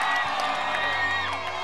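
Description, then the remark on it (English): An audience at a prophetic church service shouts and cheers to the Lord all at once, a loud, dense roar of overlapping cries and whoops that holds steady for its whole short length. “Give the Lord a shout!”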